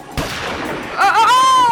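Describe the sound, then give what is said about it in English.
A single sharp gunshot cracks out at a stampede of ghost pigs on a haunted farm, followed by a rumbling wash of noise and then a loud, wavering, high-pitched squeal that warbles and slides over the din. “Halt, or I will shoot!”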